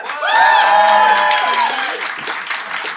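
The audience of the Festive Phoenix Flat Slam Christmas show bursts into loud applause with whoops and cheers, voting for one side of a mock legal case; clapping dense and steady, high excited shouts rising over it before the noise gradually eases off.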